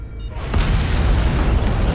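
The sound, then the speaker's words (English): A loud explosion, guessed to be an antimatter charge set by a boarding party aboard a cruiser warship, erupts suddenly and rolls into a sustained, deep rumbling roar with crackling noise across the spectrum, filling the remaining moments without any voices. “It must have been one of their boarding parties. I'd guess an antimatter charge.”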